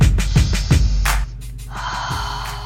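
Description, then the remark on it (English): An airy inhale through the nose followed by a long, steady exhale through the mouth, with a few soft low thumps at the start and no talking. “With that being said, let's take a deep breath through the nose and exhale through the nostril, exhale through the mouth.”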